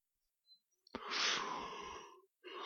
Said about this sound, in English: Sneezing.